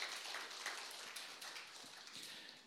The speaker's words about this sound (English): Church, we're not those people who quit. And you can clap. There you go.